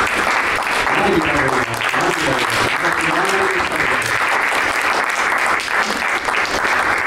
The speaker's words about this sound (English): All right, everybody, please give another huge round of applause for the panel and the moderators.